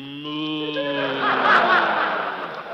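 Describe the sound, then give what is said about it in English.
A single long, low moo from a cow among 500 head of cattle on the Rancho Benet, fairly loud, sustained for a couple of seconds before breaking into a rougher, noisier ending. “I have beautiful daughter, I have beautiful rancho, and 500 head of beautiful cattle.”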